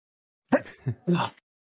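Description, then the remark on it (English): A single loud sneeze, a sharp explosive burst followed by a brief voiced tail, with nothing else around it before it cuts off into silence. “Sorry. Bless you. Meant to hit the mute button.”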